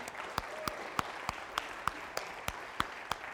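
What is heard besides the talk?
audience applause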